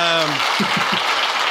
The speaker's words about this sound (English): Congratulations. So we'll get you some applause there.